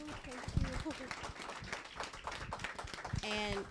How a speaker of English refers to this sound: This will conclude our event, but first I would like to give you a round of applause to our facilitator,